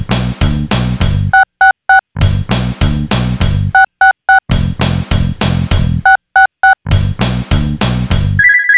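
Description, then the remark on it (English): A landline telephone rings on an outgoing call dialed over speakerphone, in short bursts of three electronic trills, repeating four times between loud, heavy rhythmic blasts. A final tone sounds at the end. No one speaks. “Well, then, let's punch them three unholy numbers and see who picks up the landline of the damned.”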